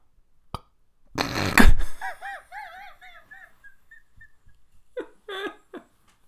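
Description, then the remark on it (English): A feeble burp after sipping a drink from a can: a short breathy gust that trails off into a thin, wavering croak, followed a moment later by a couple of quieter croaky bursts. “This was the most pathetic burp of 2020.”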